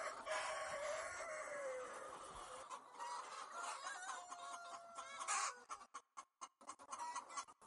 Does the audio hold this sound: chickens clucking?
yes